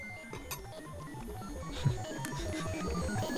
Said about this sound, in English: It's reached 0 degrees Kelvin. That was the notification. That was the notification.